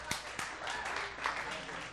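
Audience applause: a steady, dense wash of many hands clapping at an even loudness, with a few sharper individual claps standing out near the start.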